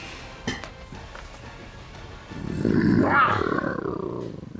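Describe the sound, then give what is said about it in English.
A person gives a loud, drawn-out growling roar imitating a dire wolf, voicing a game character using wild shape to turn into one, rising from a low rumble into a harsher snarl before trailing off. A faint clatter sounds just before it. “And I am going to turn into a dire wolf.”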